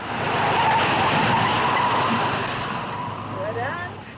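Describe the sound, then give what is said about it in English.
A hearse's tires skid loudly across pavement in a sustained, rough screech lasting about four seconds, with sharper rising squeals near the end as the car swerves. “Hey, this whole thing handles well. Ever drive a hearse”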